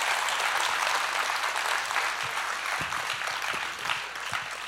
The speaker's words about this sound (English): Give them one more round of applause. They were so precious.